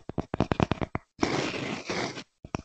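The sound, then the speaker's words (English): A piece of trash is picked up and handled: a quick run of sharp crackles and taps gives way to about a second of steady, dense crinkling, like a plastic wrapper being squeezed, then a couple of final clicks. No one speaks. “Like, you can pick up a piece of trash and just, like...”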